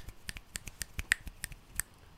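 A rapid series of sharp finger snaps, made instead of clapping, around a dozen crisp clicks in a loose, uneven rhythm, fairly loud with no voices.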